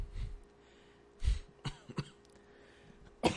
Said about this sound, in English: Sorry for the coughs.